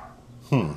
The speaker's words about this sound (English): Oh, my God. Why won't they stop barking?